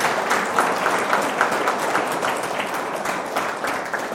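A short round of audience applause, a steady, dense patter of many hands clapping at an even level for about four seconds, with no voices over it.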